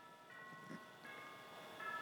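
Church bells ring faintly, their tones overlapping and sustaining, with new strikes arriving every second or so over a soft background hum. No one speaks.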